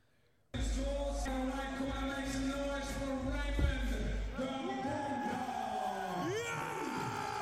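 A loud, dense crowd roars and cheers nonstop, with one man's voice screaming and bellowing above the din, rising and falling in long strained yells near the microphone.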